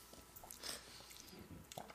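Wet, smacking bubble gum chewing with a few sharp little pops and clicks, one louder snap at the end; no talking, fairly quiet overall.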